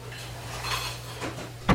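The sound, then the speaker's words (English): Kitchen clatter of chopping, dicing, utensils and dishes: a few scattered knocks and clinks over a steady low hum, ending in one sharper, louder clack. No one speaks. “Hey, everybody, stop your chopping and dicing.”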